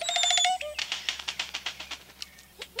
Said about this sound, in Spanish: Las oropéndolas cantan un estribillo alarmante.